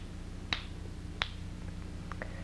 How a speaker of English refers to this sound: Now, when I snap my fingers 3 times, she'll go into this state, which is called the coma. It's not a medical coma, okay? It's just a state that they call it.